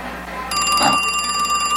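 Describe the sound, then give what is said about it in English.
A telephone in a phone booth starts ringing abruptly, a bright, buzzy electronic trill with a steady high tone that continues for a couple of seconds, fairly loud, with no voices. “The phone booth again. Hello?”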